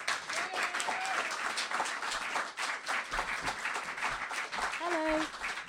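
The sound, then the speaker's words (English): A crowd applauds steadily for several seconds to welcome a performer, a dense, even patter of many hands clapping at once, with a few brief whoops or cheers rising above it. “So round of applause, please”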